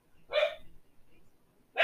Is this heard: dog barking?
yes